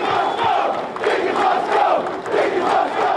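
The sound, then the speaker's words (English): A large crowd at a 1993 New York police rally against David Dinkins, which turned into a police riot, shouts and roars in continuous, loud waves, with overlapping voices rising and falling and no single speaker standing out. “And it all came to a head during a police rally against Dinkins during the 93 race that really turned into a police riot.”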